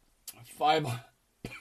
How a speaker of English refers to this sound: Sorry for the coughing.